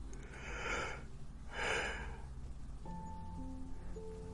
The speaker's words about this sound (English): I can't help yawning. When I do the whisper sessions, I feel so tired. I just want to go to sleep.